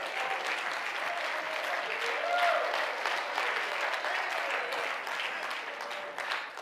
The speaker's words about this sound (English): Come on, clap your hands and praise Him tonight.